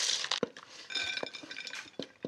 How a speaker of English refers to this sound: And I'm just gonna use about half of my paprika mayo and then serve the other half in little bowls for people to add more if they'd like. So we'll pour it right over the top and I'll stir it around and get them nice and evenly coated.